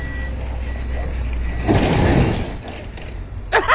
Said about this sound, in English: Now the UPS truck is going to hit this little fence. I see the goats. And when it hits the fence, it makes this loud noise and all the goats faint.